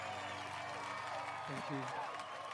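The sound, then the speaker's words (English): A crowd applauds after a man's singing performance, a steady, dense wash of clapping that fills the whole moment, and a single voice briefly rises above the noise near the end. “And the crowd goes wild.”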